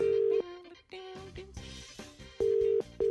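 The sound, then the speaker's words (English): A telephone call being placed to a radio listener for a prize giveaway: loud, steady ring tones sound in separate bursts, with a busy stretch of clicks and tones from the dialing in between. No one speaks. “Let's give someone a call now.”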